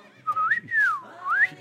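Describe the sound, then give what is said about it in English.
A person whistles a short, swooping sign-off tune that glides up and down in pitch, imitating a dolphin's call, clear with no talking. “So I'm going to whistle my sign off like a dolphin might.”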